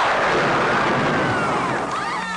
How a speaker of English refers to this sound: Use your lightning bolt.